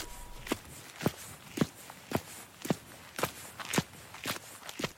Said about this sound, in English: So we're now walking up into Hopworth itself, and we're going to walk past a couple of fantastic pubs.